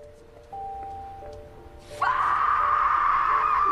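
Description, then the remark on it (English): A woman's loud, raw primal scream, from a film in which Miss Pomfrey is fired from a school for teaching a book that some conservative parents want banned, bursts in abruptly partway through and holds at full strength to the end, over a faint steady hum of background tones. “Miss Pomfrey releases a primal scream after being fired from the school for teaching a book that some more conservative parents think should be banned.”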